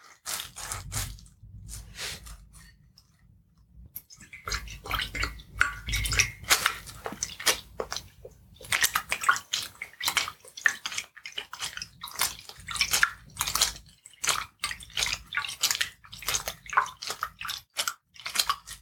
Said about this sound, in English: The next step is to make this cleaning product all foamy. So we do that by taking one of our sponges and just gently giving the water a bit of a stir.